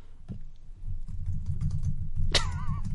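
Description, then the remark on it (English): Quick, soft clicks of typing on a computer keyboard patter along over a steady low rumble, with a short rising squeaky tone near the end. “I can hear the typing.”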